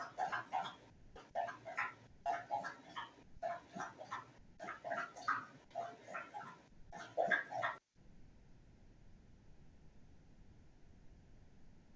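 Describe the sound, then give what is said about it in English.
A dog laps up drinking water in quick wet bursts that repeat steadily for several seconds, then the sound cuts off abruptly, leaving only faint background hiss. “No, I just thought it was funny all of a sudden the dog's drinking.”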